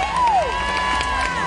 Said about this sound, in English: And the sledge hockey people are getting a very big cheer.